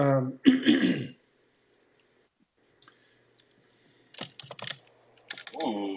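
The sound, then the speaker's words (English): Short, irregular bursts of computer keyboard typing, fairly quiet, following a brief throat-clearing sound and a pause, with a voice starting up at the very end. “Are you typing it up?”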